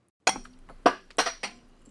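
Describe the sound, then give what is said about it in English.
A Jarritos drink bottle cap being popped open: a quick series of four sharp, metallic clinks with a brief glassy ring after each, fairly loud, with no talking. “I should pop this top and celebrate the siren turning off in time for the show to progress, so we don't have to listen.”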